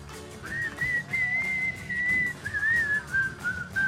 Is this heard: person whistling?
yes